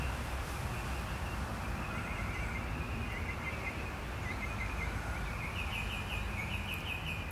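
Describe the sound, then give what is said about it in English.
Birds call steadily over a dense, noisy outdoor background, their chirps repeating at a moderate level for the whole stretch with no one speaking. “You see, if I was imagining hoping that the podcast was good, I'd be a little worried about the volume of the bird noise.”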